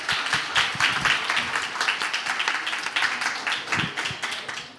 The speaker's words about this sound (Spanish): Muchas gracias. No, un aplauso para Félix también.